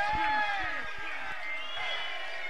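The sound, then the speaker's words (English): A crowd cheers and shouts in a dense, steady roar of overlapping voices, with a few dull thumps near the start before the noise settles into a continuous wash. “Can I have some noise for the scream?”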